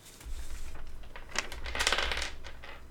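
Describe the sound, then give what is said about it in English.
A rattle of dice tumbling across a hard tabletop, rolled for a history check in a tabletop game, a quick burst of clicking impacts that builds and then settles over about two seconds, with no voices. “Oh, yeah, dice. I'm prepared.”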